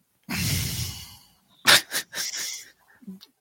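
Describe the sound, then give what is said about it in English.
A long, raspy wheezing exhale hisses out steadily for about a second, like air escaping a valve, followed by a few shorter breathy bursts and faint vocal sounds. “While you're breathing, okay, go ahead. It's like he's releasing pressure. It's like somebody turned a valve.”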